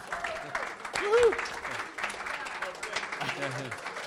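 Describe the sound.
A room full of people applauds steadily for about four seconds, a dense wash of clapping with a few scattered whoops and voices calling out over it.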